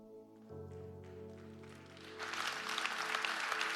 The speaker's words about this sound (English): Thank you. Thank you for clapping. It's kind of that clap like, I'm not sure I like this sermon, but I know he's telling the truth and I'm trying to figure this out.